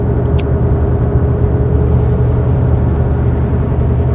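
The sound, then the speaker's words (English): A car driving southbound on the highway: a steady, dense low rumble of road and engine noise with a faint constant hum, unchanging in loudness throughout, with no voices. “It's just that's where the split occurred, and I will be getting off, driving southbound here in about a mile or so.”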